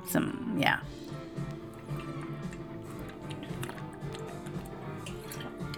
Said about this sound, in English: Drink some water real quick.